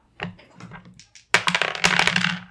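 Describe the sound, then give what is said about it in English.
Dice are grabbed with a soft rattle of clicks, then rolled across a surface in a loud burst of rapid clattering that tumbles on for about a second. “Do you want to grab dice? Yeah, let's grab dice.”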